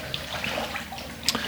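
Water sloshes and splashes in a baptismal pool as someone steps in to be baptized, with a few brief bright splashes standing out over a steady watery wash.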